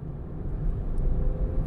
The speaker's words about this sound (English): Meanwhile, 2 days later, here I am in the car on the way to the next gig.